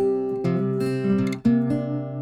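A clean acoustic guitar loop in Logic Studio plays a short, steady pattern of strummed chords, moderately loud, with crisp pick attacks and sustained ringing notes, no voices present.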